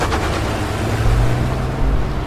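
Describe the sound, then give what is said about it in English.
A car engine roars loudly and steadily, a deep rumbling drone that pushes hard as the car speeds off down the highway as fast as it will go, with no voices over it. “I took off as fast as the car would take me.”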